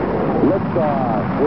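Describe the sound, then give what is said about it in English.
A steady, dense roar of a rocket engine liftoff sound effect fills the whole clip, loud and unbroken, with a voice speaking briefly over the rumbling noise. “All engine running.”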